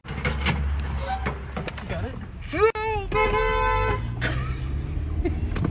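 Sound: car horn honking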